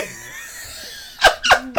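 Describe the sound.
Someone blows three quick, wet raspberry-style mouth farts, sputtering through a mouthful of sandwich, each burst loud and short after a quiet, faintly murmuring opening.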